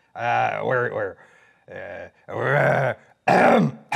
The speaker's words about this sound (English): clear my throat.